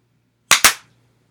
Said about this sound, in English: In that one loud clap.